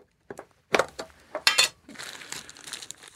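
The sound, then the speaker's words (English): Plastic crinkles and rustles in a few sharp bursts, then a steadier tearing rasp as a plastic bag is ripped open, with no one speaking. “I got to rip this open. It's a plastic bag.”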